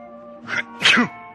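A single loud sneeze from a person with a cold: a short breathy intake followed by a sharp, forceful burst, set against a faint steady hum in the background.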